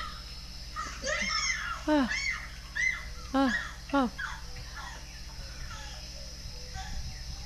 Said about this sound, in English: I was like, I don't even know what makes these sounds. Is that like a howling monkey? It sounds like it. Right? A howler monkey? Some kind of monkey.